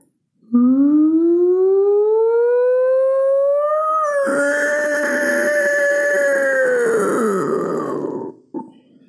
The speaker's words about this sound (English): And from the Ben Burtt's Deepest Nightmare, here I leave my scream. Sorry in advance.